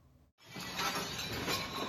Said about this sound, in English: On Saturday, March 4th, a group of roughly 20 men stormed into a restaurant in Queens, New York, and broke tables, chairs, and dishes. They covered their faces with masks and hoodies.